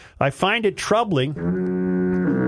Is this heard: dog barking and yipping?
no